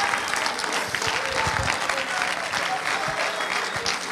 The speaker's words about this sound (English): Somebody clap your hands to Jesus.